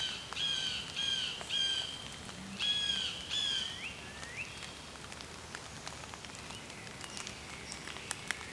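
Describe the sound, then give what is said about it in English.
A blue jay calls in a quick series of harsh, nasal notes, two bursts of three or four, over a steady patter of dripping or light rain. No one speaks. “Blue jay.”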